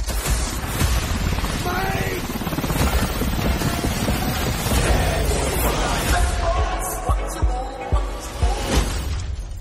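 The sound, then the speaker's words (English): A steady, dense roar of the rotors of several helicopters fills the whole stretch, loud, with bursts of clatter and muffled voices mixed into the noise. “hell are you getting all these helicopters?”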